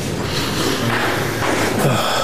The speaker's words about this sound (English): Smelling his dirty sock now.